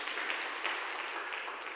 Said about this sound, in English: Clap your hands if you heard me. Amen.